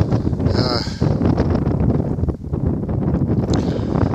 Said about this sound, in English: And yeah, it's a bit windy.